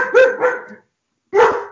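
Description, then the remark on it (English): A dog named JC barks excitedly: two quick, loud, mid-pitched barks run together, then a short silence before a third sharp bark. No one speaks. “Can you hear JC freaking out?”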